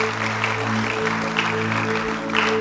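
An audience claps steadily for a few seconds, a dense, even patter of many hands, while low sustained tones, like a held keyboard chord, hum underneath.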